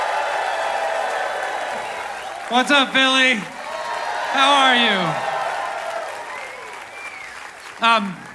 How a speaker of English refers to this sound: We are feeling all that love here in this beautiful space tonight, and I want you to share even more of that love and join me in giving a warm round of applause to our host, Chris Hayes!